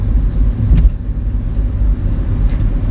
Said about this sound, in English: All right, so I got over so this truck could go past me. It goes past me, and then I get back behind it, and it slows down.